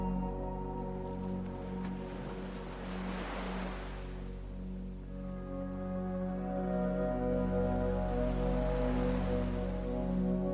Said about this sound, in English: You hear the ocean waves.